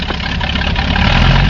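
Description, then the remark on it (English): An air circus airplane's engine drones loudly with a dense, rumbling roar, its steady low growl swelling slightly as it approaches and roars overhead within 10 feet of a crowd, with no voices present. “And just at that point, his speech was drowned out by the sound of an approaching airplane.”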